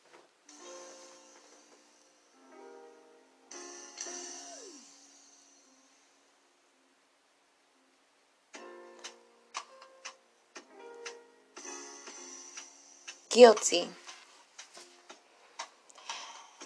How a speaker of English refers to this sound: You know, step on into my little cafe. And just vibe with me. Do some small little finger snaps.